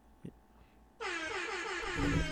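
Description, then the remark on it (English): A loud, blaring air horn sound effect suddenly kicks in after a moment of near quiet and holds steady, harsh and brassy, overpowering for over a second. “Hit him with the air horn, man. We got sound effects now.”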